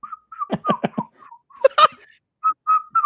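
Someone whistles a quick, bouncy scat-style tune in short clipped notes, broken up by breathy, percussive mouth sounds, with no talking.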